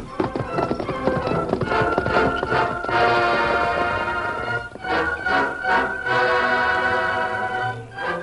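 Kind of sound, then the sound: sound effect, horse galloping hoofbeats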